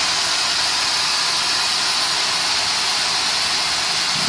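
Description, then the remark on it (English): A steady, unbroken pink noise hiss fills the whole clip at a constant, fairly loud level, a smooth rushing sound with no rhythm, pitch changes or voices. “That's pink noise. I was going to say, I recognize that that's pink noise.”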